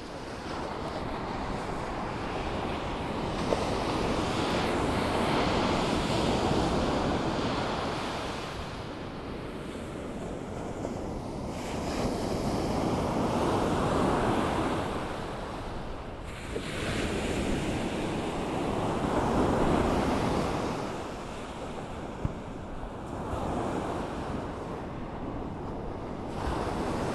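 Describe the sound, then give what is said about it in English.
Ocean waves roll in and break on the shore at Santa Monica Beach under a thick layer of fog, in steady, swelling surges every few seconds, a broad continuous wash of surf with some wind rumbling against the microphone and no voices. “As I attempt to get away from the city's light pollution for star watching purposes, only to be met by a thick layer of fog and calming waves.”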